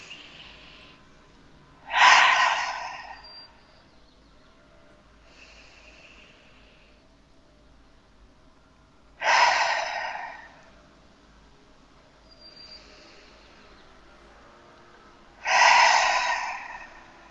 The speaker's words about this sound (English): And again, just take three cleansing breaths, which is inhaling through the nose and exhaling through the mouth.